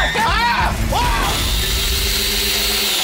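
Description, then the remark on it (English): A voice lets out a short, wavering, theatrical horror-movie-style scream, performed on request, in a couple of rising and falling bursts, then gives way to a steady rushing, rumbling noise for the rest of the moment. “Can you do your best horror movie scream?”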